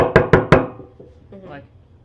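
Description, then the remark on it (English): Three quick, sharp knocks on a classroom door during a school period, loud, in an even rhythm, followed by a short faint murmur of a voice. “and I hear a knock at the door, it's just, you know, it's a...”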